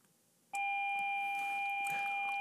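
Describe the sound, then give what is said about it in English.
A school class bell starts abruptly and rings on as a loud, steady electronic tone that holds without a break until the end, unaccompanied by talk. “Well, I'm a class bell.”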